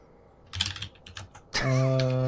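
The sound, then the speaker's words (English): A quick flurry of clacky mechanical keyboard keystrokes, fairly loud, lasts about a second before a steady, sustained tone abruptly takes over. “All right, mechanical keyboard guy.”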